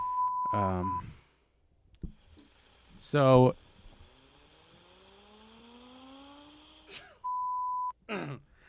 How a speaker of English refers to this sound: So this is... I can't do it. Excuse me. I'm blowing my nose.